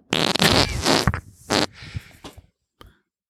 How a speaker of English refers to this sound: Tasting your fart.